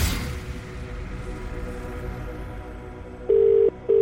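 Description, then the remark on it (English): A telephone ringback tone on an outgoing call made across the Hits Radio Network comes through loud and clear near the end: two quick, steady buzzing bursts heard by the caller, following a few seconds of soft background music. “Remember, you need to answer the phone before it's rung five times.”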